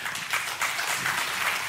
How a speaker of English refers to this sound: I think we could do a little better than that. Yeah, that's right. They deserve double. Whenever you decide to clap, they deserve double honor. So just go a little faster and louder.